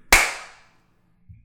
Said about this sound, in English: Clap sync.